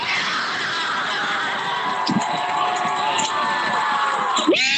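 A large 2020 Black Lives Matter protest crowd at the Justice Center in downtown Portland, where marchers from Peninsula Park merged with a gathered crowd, roars with sustained cheering and shouting, a dense wash of many voices, with a few louder whoops rising above the din near the end.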